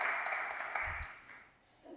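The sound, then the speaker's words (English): An Episcopal church audience claps together to welcome a new organist during a service, a dense, steady patter of many hands, with a few sharper claps standing out before the applause thins and fades away near the end. “Episcopalians clapping.”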